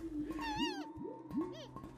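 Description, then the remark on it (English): A small monkey-like animal in a canyon with strange trees chatters while jumping up and down, in a quick series of squeaky, warbling chirps and trills that rise and fall in pitch, over a low steady hum. “A little monkey-like animal coming over to take a look at me.”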